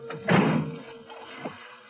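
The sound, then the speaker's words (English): Heavy gilded doors swing and land with a loud, resonant thud as a person walks through, followed a moment later by a softer closing knock, with no voices. “I took my light traveling bag out of my car and walked through the heavy gilded doors again.”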